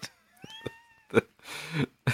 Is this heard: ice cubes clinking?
no